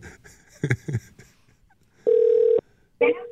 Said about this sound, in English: One ringy dingy. It's always a crapshoot when we try to do this live, right? Come on, answer. If your phone's ringing, answer it.